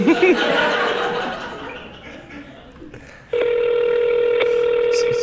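A telephone call being placed to a wireless customer: a few short dialing tones, then a steady, unbroken electronic ringing tone that carries on to the end with no one answering.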